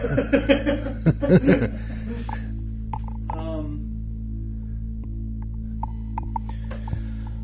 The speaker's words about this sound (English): Man, there is the Bremerton hum I'm told you about. I'm going around the room and trying to hide the Zoom recorder under things because there's a residual buzz that you can hear right now, of course.